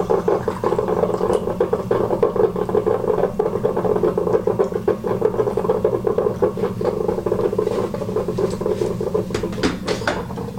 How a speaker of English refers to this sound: All right, so the coffee is all brewed. And let me just show you what it looks like. There we go, I have a full pot of this nice coffee here. Check it out. And here we go, let's pour ourselves a cup.